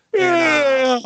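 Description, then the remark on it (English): A pet named Zeus yawns with a loud, drawn-out whining moan that slides gently downward in pitch and lasts about a second, heard on its own with no talking. “Zeus is yawning.”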